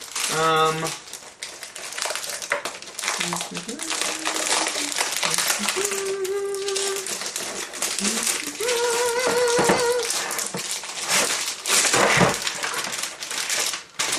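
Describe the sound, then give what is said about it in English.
Loud crinkling and crumpling of plastic packaging as a mouse and keyboard are unboxed, rustling almost continuously, with a man's voice speaking intermittently over the handling noise. “Alright, so if we pull this out, ladies and gentlemen, there is batteries already pre-installed, and here is your USB dongle inside where I thought it would be.”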